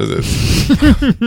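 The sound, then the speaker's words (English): A voice mimics loud belching, imitating the film character Miss Ganesh belching: a breathy, rasping rush followed by about four quick, croaking burp sounds in a row, forceful. “Miss Ganesh is just like belching and blorching all over.”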